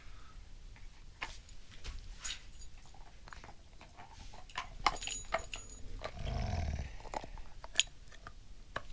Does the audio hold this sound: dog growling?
yes